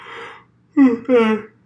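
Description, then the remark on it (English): A sneeze: a soft, breathy intake of air, a brief pause, then a loud, voiced two-part burst that cuts off quickly. “Bless you.”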